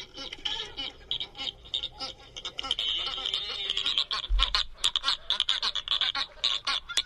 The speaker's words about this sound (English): It's a Salvin's albatross, which is one of our smaller albatrosses.